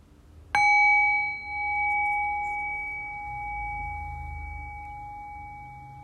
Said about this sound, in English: And in the next few breaths, I'll ring the sound of the bell. The invitation then is to rest awareness on the decay of the bell. Allow the fade of the bell to guide your awareness into silence.